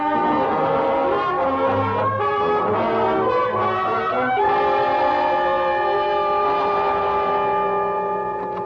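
A loud, sustained train horn blares in steady, chord-like tones that shift pitch partway through, over the rumble of a passing train, with no voices.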